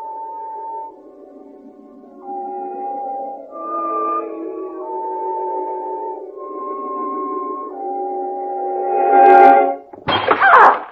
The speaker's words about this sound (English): Oh, did I wake you? Oh, I'm sorry, dear. It was a vase. I knocked it off the mantel.